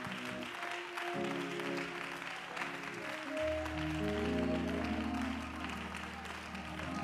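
audience clapping

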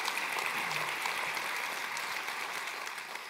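audience applause

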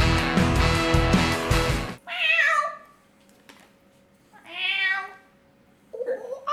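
cat meowing

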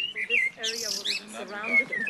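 birds chirping outdoors

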